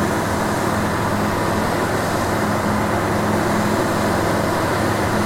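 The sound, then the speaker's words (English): Aeroplane engine noise while cruising at about 5,000 RPM, burning about 23 liters of fuel per hour at about 220 kilometers per hour over the ground: a steady, unbroken droning roar with a low humming tone running through it, holding an even loudness throughout, with no voices. “Fuel flow should drop to about 23 liters per hour, and at this cruising speed we'll do about 220 kilometers over the ground in an hour, so 23 liters for 220 kilometers, so about 10 k's per liter.”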